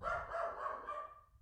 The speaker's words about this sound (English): And now he's fucking barking.